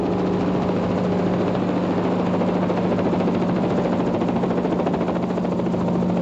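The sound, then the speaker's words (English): A Chinook helicopter's twin rotors beat in a rapid, steady thrum over a deep engine drone and a constant low hum, loud throughout with no voices. “I want to take a quick sidetrack into Chinook helicopters.”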